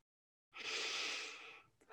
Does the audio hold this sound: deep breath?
yes